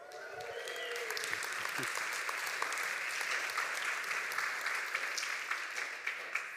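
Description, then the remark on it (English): A crowd applauds steadily for the speaker's wife, marking the couple's 30th wedding anniversary, a dense wash of many hands clapping at a fairly loud, even level throughout, with a few brief murmurs of voices at the start. “Thanks for clapping for her.”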